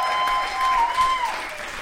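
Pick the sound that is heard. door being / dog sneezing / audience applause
audience applause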